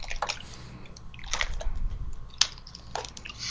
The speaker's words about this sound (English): I gotta take a sip of water here.